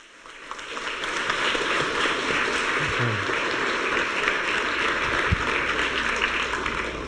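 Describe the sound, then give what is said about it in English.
Sustained audience applause welcoming a speaker, a dense, steady wash of clapping that swells in within the first second and holds at an even level for several seconds, with no voices over it. “Can you please join me? Warmly welcome”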